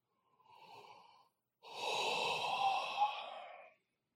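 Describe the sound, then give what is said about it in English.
A single yawn during a meditation session: a short breathy intake, a brief pause, then a long drawn-out exhale with a faint voiced, airy tone that fades away. No one speaks. “Now, in Bach meditation, I just yawned, and that's a signal that the process is working.”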